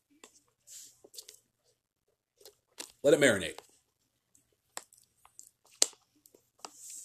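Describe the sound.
Quiet mouth sounds of someone sipping water: scattered wet clicks, slurps and a swallow spread over several seconds, interrupted once by a short spoken phrase.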